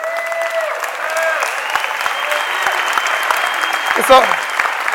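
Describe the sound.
A crowd claps steadily for several seconds, a dense wash of applause with scattered whoops and voices mixed in, fairly loud and close throughout.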